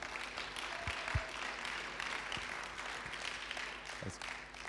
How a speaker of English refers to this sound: Can we give them a round of applause as they come as well?